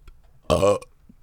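A single loud burp with a throaty, rumbling tone, lasting about a third of a second and standing alone against near silence.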